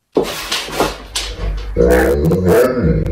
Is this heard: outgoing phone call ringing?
no